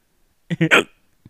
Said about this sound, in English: It's my hiccups. It's disgusting.